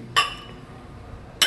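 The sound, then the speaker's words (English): Two bright, crisp glass clinks ring out about a second apart as glasses of Reposado tequila touch in a toast at a tequila tasting, with a faint murmur beneath. “Cheers. Cheers.”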